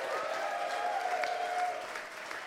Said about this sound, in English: And before we go, one final note, we'd just like to say a massive round of applause